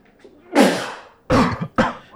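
Three loud sneezes in quick succession, the first a longer explosive burst that trails off, then two shorter sharp ones about half a second apart, with no talking.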